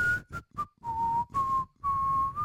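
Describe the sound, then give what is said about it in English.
A person whistles the short tuneful melody of a song, a series of clear pitched notes with brief gaps between phrases, some held longer than others, with no talking. “Maybe my AI can pick up my whistle.”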